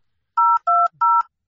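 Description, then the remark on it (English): Three quick telephone keypad dialing tones as a phone call is placed, each a steady dual-pitched beep lasting about a quarter second with short gaps between, clear with no talking. “I'm going to make a special phone call right now.”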